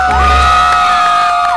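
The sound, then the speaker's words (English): A woman's loud, sustained high-pitched scream rises and holds steady over a live song recording, with a crowd cheering in the background for nearly two seconds. “She literally screams over half the song.”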